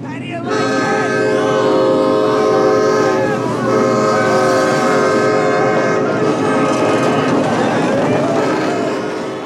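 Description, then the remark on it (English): A loud train horn blares in sustained, layered tones over a heavy rumbling of rolling rail cars, continuous from start to finish, in a film scene. “And then like, then it goes to the train, scene, which is the best.”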